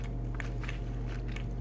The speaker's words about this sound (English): I could trust her the way she chews.